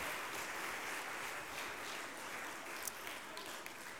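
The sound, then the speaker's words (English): A church audience applauds steadily for about four seconds as a clap offering to God, a dense, even wash of many hands clapping with no pauses and no voices rising above it. “And I think with the great work that's taken place this week, I think God deserves a clap offering for all that he has done.”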